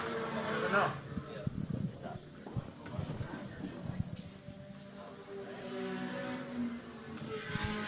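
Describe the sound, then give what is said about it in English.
A train of race cars roars past one after another into turn one on a race track, led by a Nissan Juke, engines droning and revving, with an indistinct voice talking over the steady mechanical noise. “Got a nice big train of cars here into turn one.”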